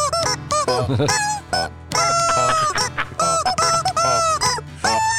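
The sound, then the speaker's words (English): Loud animal sound effects from an AI machine follow one another in quick succession: croaking frog calls, a clucking, squawking chicken and a grunting pig, with bursts of honk-like noise and no talking. “Frog, chicken, and a pig.”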